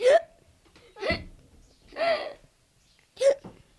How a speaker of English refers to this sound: I can hiccup on command.